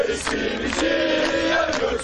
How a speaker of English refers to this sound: Earlier in the day, scenes like these of crowds marching across the bridges over the Bosphorus gave an indication of just how big the protest had grown.